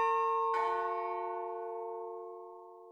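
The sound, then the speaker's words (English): A deep, resonant doorbell chime of an older house, reminiscent of an old haunted mansion, rings out in two overlapping tones after being pushed outside; its bells clang together in the foyer, the notes sustaining, vibrating and slowly fading with a lingering, old-fashioned echo. “It startled all three of us, as their house is older and has a doorbell chime that's reminiscent of an old haunted mansion.”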